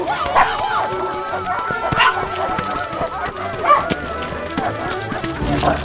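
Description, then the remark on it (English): More than a dozen dogs, one named Beardsley, bark and yip in a busy, overlapping chorus, with sharp repeated bursts and some whimpering mixed in, continuing throughout. “Come on, we've only got 10 minutes until I have to return all these dogs.”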